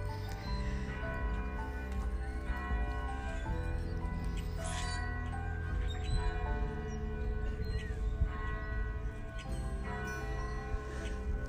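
Church bells ring out steadily for the whole stretch, their overlapping tones blending into a continuous, resonant peal with no voices.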